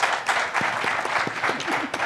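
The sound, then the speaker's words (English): An audience applauds a panel of guests just introduced, dense overlapping claps forming a continuous, fairly loud wash of sound with no voices standing out. “So if you give them all a big round of applause, we'll get going.”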